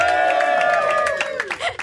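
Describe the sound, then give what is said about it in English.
A show's audience screams and cheers loudly to welcome a singer, with high, sustained shrieks that slowly drop in pitch, while rapid applause claps steadily underneath throughout. “Please give a huge scream for ….”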